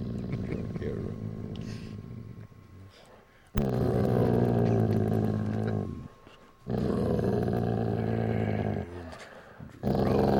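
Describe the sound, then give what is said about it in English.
A dog named Mahler, prompted to say a segment introduction, makes drawn-out, throaty growling vocalizations: a quieter rumbling stretch, then two loud, sustained grumbling bursts separated by short pauses, with another starting at the end. “Well, Mahler, can you say it on your own today instead of me introducing this segment? Can you say it?”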